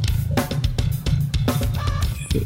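A shrill, bird-like squawk cuts through a dense music track near the end, riding over a heavy bass line and sharp, upfront snare hits. No one speaks.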